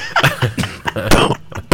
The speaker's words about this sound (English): All right. It's a cough break.